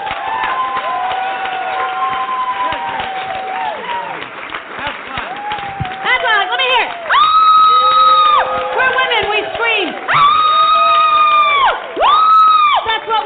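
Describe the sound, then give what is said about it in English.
A comedy show audience cheers loudly and steadily as a performer is welcomed onstage, with several long, piercing screams rising above the roar in the second half, sustained. “We like to scream for no reason.”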